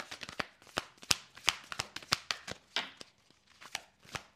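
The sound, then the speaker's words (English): Someone shuffles piles of tarot cards, a quick, uneven run of crisp taps and snaps with brief pauses between them. No one speaks. “By watching me shuffle my piles, you'll get to see a little bit of that magic that I think is missed in traditional pick-a-card videos, because that is the spirit to me.”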